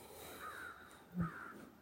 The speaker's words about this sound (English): The crows have a lot to say. Perhaps they're talking about the light as well.